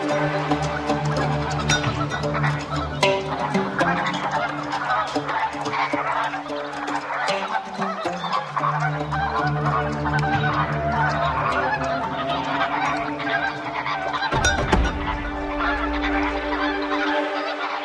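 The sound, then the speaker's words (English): A large migrating flock of lesser and greater flamingos honking nonstop on flooded soda pans, dozens of overlapping goose-like calls forming a loud, dense chorus that stays steady throughout, with no voices over it. “Migration includes both lesser and greater flamingos.”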